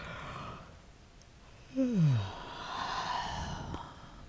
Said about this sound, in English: Yawning is actually a wonderful way to relax. You might want to yawn right now. Big inhale and yawn.